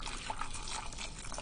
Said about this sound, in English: Now the other thing is I've just boiled some hot water. And I'm just going to get one stock cube of beef and just get that ready and pop that into this jug. And I'm just going to pour some water over that.